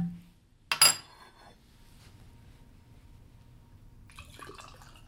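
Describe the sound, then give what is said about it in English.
Classe Azul Reposado tequila is poured into glasses: a sharp clink or pop near the start, then a soft, quiet trickle of liquid with light glassy rattles toward the end. No one speaks. “why don't you do the honors, pour us a little bit, and we'll get this thing started.”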